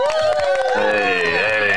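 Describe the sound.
A recorded crowd cheers loudly, with many overlapping whooping voices over a steady wash of clapping that holds at full level for the whole moment. It is played to welcome a guest onto the show; none of the people cheering are actually present.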